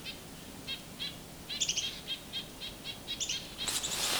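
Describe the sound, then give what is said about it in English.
A purple finch gives a steady series of short, high chirps, some doubled, over a soft outdoor background, ending in a brief rush of noise. “Might have been a purple finch call, I don't know.”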